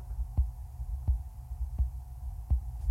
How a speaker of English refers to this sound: And one thing that I forgot to mention, back in August of 2009, I had open heart surgery, and they had to replace my aortic heart valve. I want to see if I can get you guys to hear my heart. So that ticking noise is my heart.